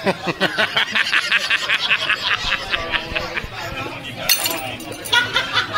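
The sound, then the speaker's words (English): Over steady rhythmic laughter and background chatter, a glass suddenly breaks with a sharp, bright crash and clinking shards about two-thirds through, followed by more laughing. “It's broke a glass.”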